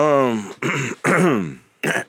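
A person clears their throat loudly, a rough, voiced rasping done twice in quick succession, with a few short guttural bursts following. No one speaks.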